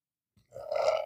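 burp

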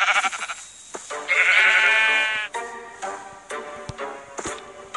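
sheep bleating

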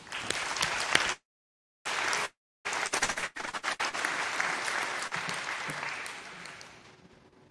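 audience clapping

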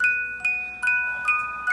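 jingle bells

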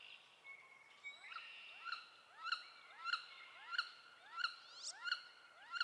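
wood duck call

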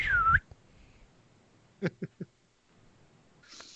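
slide whistle

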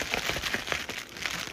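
paper crinkling

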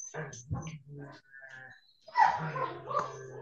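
dog whining and barking

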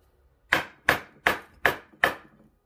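knocking on a door

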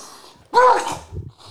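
sneeze

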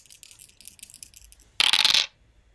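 dice rolling

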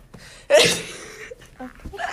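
combined cough and sneeze

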